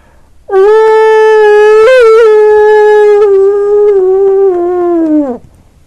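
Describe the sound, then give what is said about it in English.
A person gives a long, loud imitation of a wolf howl: one sustained, steady-pitched tone lasting about five seconds, then sliding downward as it fades out. “Manners would dictate that you give a howl to announce yourself as being there.”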